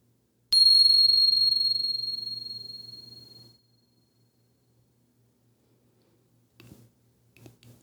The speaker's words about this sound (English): settling in, and here comes the bell.